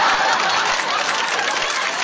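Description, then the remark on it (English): A steady wash of applause, many hands clapping together in a dense, crackling burst that holds an even loudness for the full two seconds, with no voices standing out. “Give me some more of them, give me some more of that applause.”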